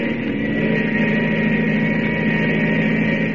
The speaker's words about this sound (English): Come on, get up to yourself and get the plane started.